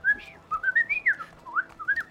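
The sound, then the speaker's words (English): A person whistles an imitation of a canary chirping: a quick, lively run of short warbling notes that rise and dip, clear with no talking. “As the canary just chirps happily to be close to you guys.”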